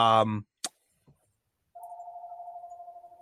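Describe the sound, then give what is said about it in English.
A mobile phone starts ringing partway through, a steady electronic tone warbling in quick pulses, preceded by a brief burst of a voice and a soft click. “My phone is ringing.”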